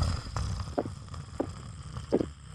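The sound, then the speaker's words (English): A man snores faintly over a phone line, a few short, muffled rasping bursts at an uneven pace above a steady low hum, with no talking. “No, I only hear your snoring.”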